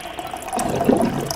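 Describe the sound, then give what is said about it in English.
Water pours steadily from a water cooler into a cup for a moment, a gurgling fill whose pitch shifts slightly as the level rises, with no talking over it. “Speaking of, let's grab our cups of water.”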